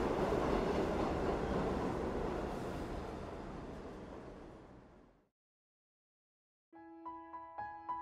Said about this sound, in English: The metro moved again.